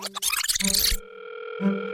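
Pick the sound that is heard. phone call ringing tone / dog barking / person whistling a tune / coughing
phone call ringing tone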